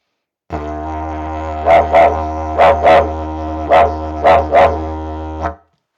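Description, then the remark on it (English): A baby didgeridoo drone with a steady low buzzing tone, broken by three pairs of sharp, punchy accents made with the player's lips that mimic a dingo's barks, woof-woof, woof-woof, woof-woof, before the drone stops. “It's a wild dog, so it's a dog barking. So it's woof, woof with your lips.”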